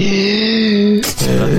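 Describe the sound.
A voice imitates loud, heavy breathing for the character Rogar Ragnak in a role-play: a long groaning exhale, a sharp airy gasp, then another voiced moan, all loud and strained.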